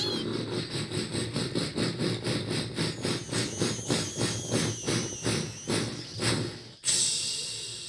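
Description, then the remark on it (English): A steam locomotive pulling a train chugs in a steady rhythm of chuffs that gradually slow down as the conductor stops the train, then ends with a sudden loud hiss of released steam as it halts. “The conductor stopped the train.”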